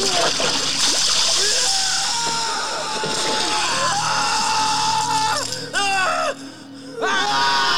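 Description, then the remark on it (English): Heavy, continuous splashing and churning water as Nanook submerges someone in a tub of holy water, with loud yells and screams rising over it and brief pauses near the end. “And then here comes Nanook and submerges him in all the holy water and then like melts down.”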